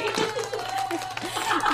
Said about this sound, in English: Give a big round of applause. Let's do it. Let me get the applause.